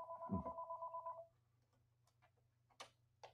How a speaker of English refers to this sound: now my phone's ringing. Sorry, I should have unplugged this.